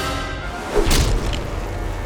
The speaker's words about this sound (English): The Arimaspian leader plunged to the earth with frightening speed. His body slammed into the ground with a sickening thud.